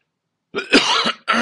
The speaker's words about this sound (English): I'm sorry, I got to clear my throat again.